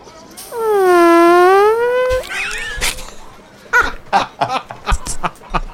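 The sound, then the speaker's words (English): A voice imitates a long, loud Triceratops fart: a sustained buzzing tone of about two seconds with wavering pitch, followed by a string of short, choppy vocal bursts. “it's quite clear that the Triceratops has just farted”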